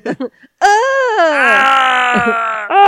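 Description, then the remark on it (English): A person lets out a long, loud scream lasting over two seconds, demonstrating how they would scream, rising then holding a strained, wavering pitch, preceded by a few brief breathy vocal sounds. “See, that's how I would scream.”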